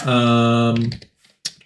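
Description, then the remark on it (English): A few quick, light clicks on a computer keyboard, following a brief sustained humming tone that fades away just before the keystrokes begin. “I'm typing. Sorry, Peter. I'm working.”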